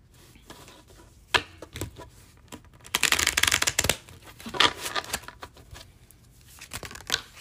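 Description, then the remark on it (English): A deck of Lenormand cards being shuffled: crisp papery riffles and snaps in short bursts, with a longer, louder flurry in the middle, and no one speaking. “Sorry if the shuffle's a little loud. Just need a few shuffles in here.”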